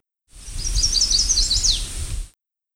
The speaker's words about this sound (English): This was the Chestnut-Sided Warbler.